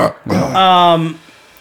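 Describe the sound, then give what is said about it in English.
A loud burp rings out for about half a second with a throaty, droning tone, preceded by a brief breathy vocal sound, then quiet. “No, not the burp.”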